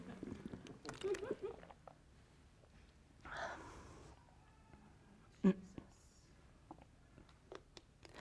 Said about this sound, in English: I'm going to take a sip and then...